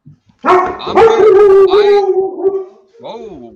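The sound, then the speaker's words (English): A dog barks in one long, drawn-out, howling vocalization lasting a couple of seconds, followed by a shorter rising yelp. “The dog's saying fair.”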